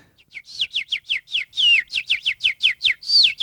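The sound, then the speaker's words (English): A person whistles an imitation of a bird call: a quick, steady run of about a dozen bright, downward-sliding chirps, fairly loud, with no talking over it. “Can you give us like a sweet bird call? Listen to this, audience.”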